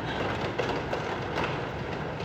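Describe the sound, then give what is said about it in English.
Steady, dense roar of rain and hail drumming on a roof, with scattered sharper hail hits pattering through the constant wash of noise. No voices are heard. “Y'all hear the rain, right? Yeah. Hail, yeah.”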